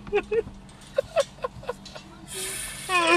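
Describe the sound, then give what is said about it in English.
Muffled, indistinct voices of neighbors talking, coming in short broken bursts, followed by a steady hissing noise and a final faint voice. “We got some special guests speaking in the background. My neighbors.”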